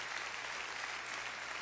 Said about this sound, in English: Our wonderful pastor and his wife are from Austria. Come on, give a hand clap for those that are here from Austria.